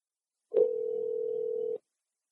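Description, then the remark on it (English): A single steady telephone ringing tone, as a call is placed to Ron Gilbert, hums for over a second after a brief click, clear, then cuts off abruptly into silence. “All right, well, let's get Ron Gilbert on the phone.”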